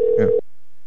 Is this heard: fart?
no